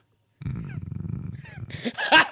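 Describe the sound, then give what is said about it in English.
A person imitates a bulldog's growl, a low, gravelly rumble lasting about two seconds that swells into a rougher, louder snarl at the end, with no other sounds. “He just growls.”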